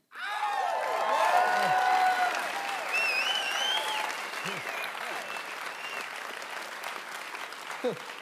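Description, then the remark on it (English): An audience applauds steadily, a dense wash of clapping with scattered whoops and cheers rising over it, gradually thinning toward the end. “Could have used those 38 claps.”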